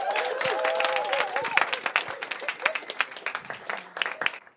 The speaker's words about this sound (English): So a huge round of applause